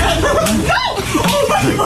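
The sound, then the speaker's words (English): An animal's tail slapping, a few sharp, wet smacks, mixed in with excited voices and soft chuckling throughout. “That's the tail slapping.”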